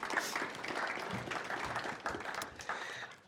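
An audience at a church gathering applauds steadily, many hands clapping in a dense, continuous patter that holds for a few seconds, moderately loud, with a faint murmur of voices underneath.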